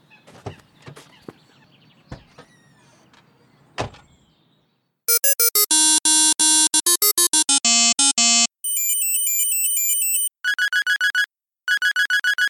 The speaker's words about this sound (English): I was trying to decide what ringtone would be most annoying to use on my new cell phone